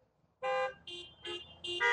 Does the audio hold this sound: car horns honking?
yes